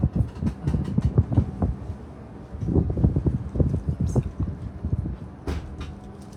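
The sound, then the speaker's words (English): Windbreaker-material tracksuit fabric swishing as someone walks: a quick run of rhythmic rustles, a burst of brushing strokes, a brief lull, then another steady series of swishes that gradually softens. “It does make a swish, swish sound.”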